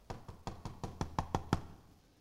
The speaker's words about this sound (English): He could barge in if he wanted to. Right? But he knocks.